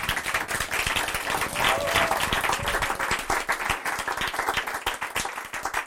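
An audience breaks into steady applause, dense overlapping claps filling the whole stretch at a fairly even loudness, with a brief whoop or cheer rising partway through.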